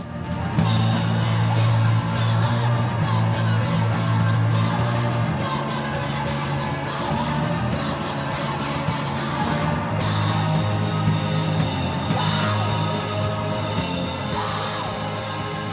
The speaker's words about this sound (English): eyes closed, sweating, screaming with her band